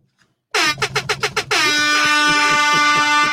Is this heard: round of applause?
no